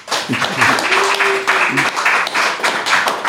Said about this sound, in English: Put a smile on your face when you hear applause.